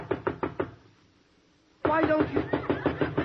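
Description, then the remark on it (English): Four quick knocks on a door, a short silence, then a louder, sustained burst of rapid, steady knocking that continues to the end. “Now, I knock on your door.”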